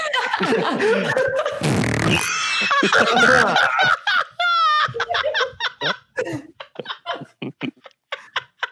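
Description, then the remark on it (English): A short, loud, blustery fart sound effect, played by clicking a button labeled 'fart!', bursts out early on, surrounded by overlapping laughter that continues as rapid giggling bursts afterward. “I just clicked on the one that said fart with an exclamation point. That's what it was.”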